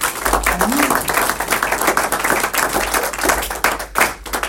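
Sustained applause from an audience, dense overlapping claps forming a loud, steady wash of noise that continues throughout, with a faint voice briefly rising underneath near the start.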